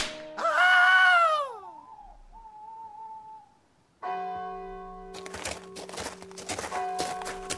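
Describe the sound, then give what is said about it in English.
A loud, falling wail gives way to a thin steady tone, then a low drone sets in under a rapid series of sharp, snapping whip cracks as a prison guard whips a prisoner. “The only thing George had to accompany his dread of the impending trial was the dulcet tones of a prison guard whipping another prisoner.”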